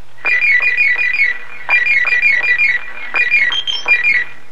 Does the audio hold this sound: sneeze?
no